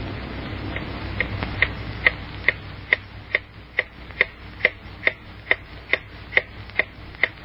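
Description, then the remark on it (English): A clock ticks steadily, about two crisp ticks per second in an even rhythm, with no voices and only a faint low hum underneath. “Time moves on. I wonder what the clock holds for Lucy.”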